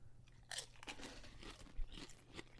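Crisp, irregular crunching of tortilla chips dipped in salsa being chewed, with several sharp bright bursts over a low steady hum and no talking.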